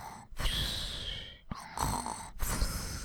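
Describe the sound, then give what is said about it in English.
A voice imitates snoring to illustrate the French word "ronfler", with three rough, raspy breaths in a row, separated by short pauses. The sound is fairly loud, with no words spoken. “It means to snore.”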